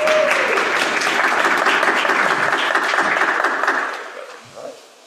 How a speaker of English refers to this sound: And a round of applause for our preacher,